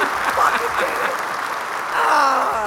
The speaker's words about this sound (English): Another round of applause, man. Yeah. We did it, guys.